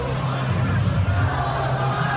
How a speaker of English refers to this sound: And the crowd singing in delight. A few Parramatta fans have left.